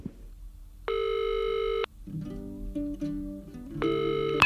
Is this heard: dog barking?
no